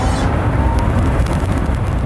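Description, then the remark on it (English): A Tesla Roadster electric sports car accelerates away, a loud, steady whooshing rush with a deep rumble and a faint rising whine, unbroken for about two seconds. “Watch me take off!”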